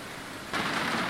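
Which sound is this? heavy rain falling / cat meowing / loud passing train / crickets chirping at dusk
heavy rain falling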